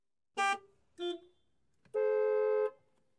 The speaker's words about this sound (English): The sound of traffic from outside.